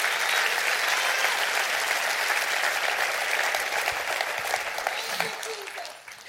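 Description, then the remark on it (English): A church audience claps their hands together in sustained, dense applause for several seconds, then begins to taper off toward the end. “Can you clap your hands and rejoice in that right now?”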